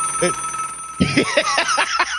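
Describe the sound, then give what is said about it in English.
An old-fashioned rotary-dial landline telephone bell rings loudly for call waiting, a steady metallic tone with a burst of rapid, warbling rings in the second half. “I don't that's really rotary dial call waiting.”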